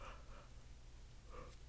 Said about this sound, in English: Oh, sorry, guys. I'm doing this really late. I just keep yawning. So if you hear any gaps, it's that's why.